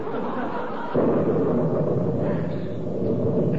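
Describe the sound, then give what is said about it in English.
Low background rumble, then about a second in a loud thunder clap bursts in and rolls on as a heavy, sustained rumble to the end, with no one speaking. “Did you see that lightning? I wish it would do that oftener or quit.”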